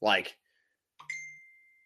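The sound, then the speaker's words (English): A short burst of a voice, then a pause before a single bright phone notification chime that rings with a steady high tone and slowly fades out. “Let me mute my phone.”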